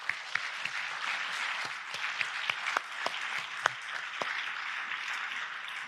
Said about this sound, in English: And we're going to celebrate them. I'm going to ask you to applaud them celebrate with them in a second. Yeah.